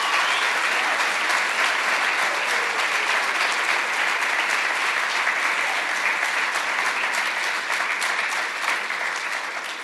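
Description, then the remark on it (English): A church audience claps steadily for guests in a dense, continuous round of applause that holds strong for about ten seconds before easing off slightly at the end, with no speech over it. “But let us give them a round of applause, just thanking them for their time.”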